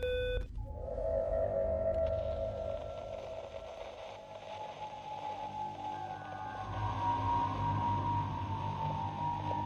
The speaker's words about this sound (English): The sirens coming from the Dash Core.